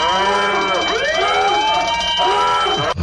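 A loud wailing siren sound effect sweeps up and down in pitch, rich with harmonics, sounding continuously for about three seconds before cutting off abruptly. No voices are heard.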